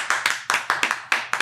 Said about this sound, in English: Normally we had one more set of hands clapping.